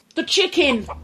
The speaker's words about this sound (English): The chicken. The jungle noises in the background. All during the day. So what are you telling me? There were large killer chickens. There were killer chickens in that jungle. Lurking robot chickens. In the undergrowth.